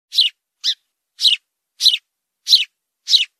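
A very angry sparrow inside the Comedy Club for Kids HQ chirps six times in a steady, insistent series of short, harsh, high calls, each about half a second apart, clear, with silence between them.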